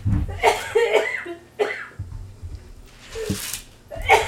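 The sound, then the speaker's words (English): Someone coughs into a shirt, a few muffled coughs in irregular bursts, with brief pauses between them and a faint bit of background voice. “I'm coughing in my shirt.”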